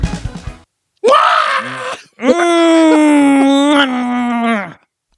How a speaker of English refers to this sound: That was ridiculous. I don't know why I screamed like that just now. I liked it. I love starting off the show like that.